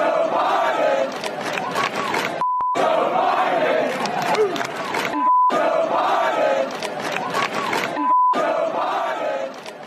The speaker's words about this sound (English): As you can hear the chants from the crowd, let's go, Brandon.